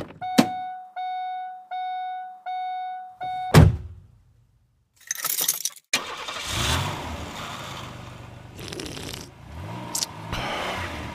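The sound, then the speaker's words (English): A car's door chime beeps steadily before a heavy door slams shut with a solid thud; moments later the engine cranks and turns over into a rumbling run. No one speaks. “All right, let's go ahead and get in the car and let's get this motherfucker started.”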